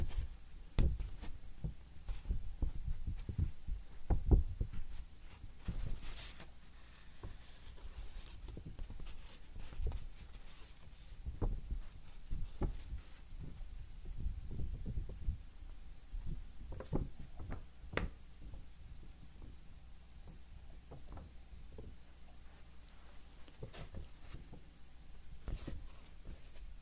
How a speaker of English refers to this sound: Here is Yuki graph paper.